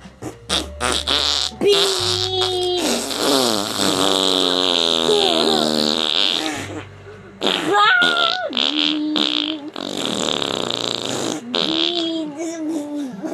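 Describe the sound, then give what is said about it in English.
Several people blow loud, sputtering raspberry fart noises with their mouths, overlapping in buzzy, wet bursts for several seconds, with brief pauses between rounds and some laughter mixed in. “Obligatory fart noises on 3, 2, 1.”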